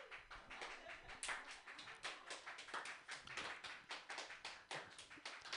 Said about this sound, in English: Thank you. That's called an applause break, everybody.